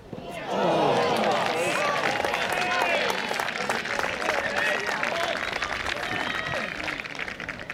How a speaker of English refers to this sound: So the first big chance of the game came in the 14th minute with a stunning Scott Basile save, preventing that chance from going in, drawing oohs and ahs from a pretty big crowd on the day.